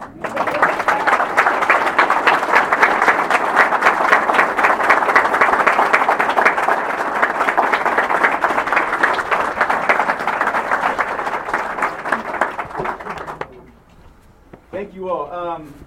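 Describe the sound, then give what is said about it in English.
Sustained audience applause for a man as he is helped to stand, a dense wash of many hands clapping steadily for about thirteen seconds before fading out, followed by a brief moment of quiet and the start of a voice. “People want to clap for you, sir.”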